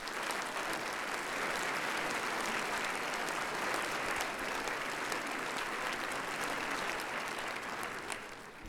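A crowd claps in sustained, even applause, a dense wash of many hands with no clear individual beats, steady in loudness throughout with no voices standing out.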